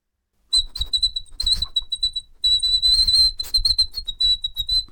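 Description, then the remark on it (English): A high, thin whistle held in long steady tones with a couple of brief breaks, over a soft, breathy rumble like air pushing through a nose. “Are you whistling? It sounds like with your a nose whistle in somebody's nose.”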